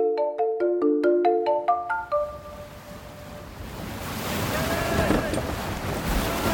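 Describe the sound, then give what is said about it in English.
A short bright melodic jingle gives way to steady wind and rushing seawater as a wave breaks over the starboard rail of a sailing ship, loudly washing down the side deck and draining off the stern, in the late morning. “A wave breaks over the starboard rail. The water washes down the side deck and drains off the stern.”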